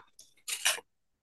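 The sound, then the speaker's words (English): Aluminum foil crinkles in a short, crackly burst, a few light rustles first and then a louder, bright scrunch lasting under half a second before falling silent. “I like aluminum foil. It's amazing.”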